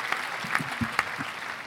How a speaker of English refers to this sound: I'll give you the applause there.